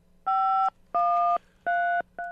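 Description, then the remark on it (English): A string of four loud, evenly spaced phone keypad tones, each a steady two-pitch beep about half a second long, the last one cut short, with a faint low hum between them, during a glitch in a call-in phone system. “So, maybe the gremlins of yesterday are reappearing with our phone system.”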